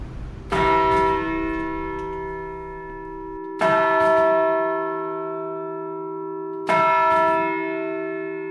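A large, modern-cast church bell struck three times at even intervals, each stroke ringing with rich, finely tuned harmonics and a deep hum that sustains long after the strike. Loud, no voices.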